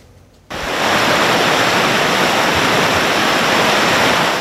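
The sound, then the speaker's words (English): After a brief quiet moment, a loud, steady roar of the high, rising Similkameen River downstream from Princeton fills the scene, its flow picking up large trees and debris, a dense continuous torrent with no voices. “High water flow is picking up large trees and other debris, creating hazards.”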